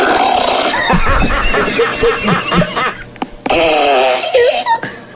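A loud, long fart sound effect from a fart soundboard plays, sputtering and raspy, breaks off briefly, then returns with a second wavering, squeaky burst. No one talks over it.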